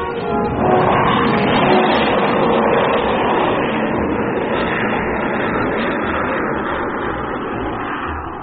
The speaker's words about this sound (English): And little more than an hour after Jet had spoken to Frank, the huge freighter passed overhead.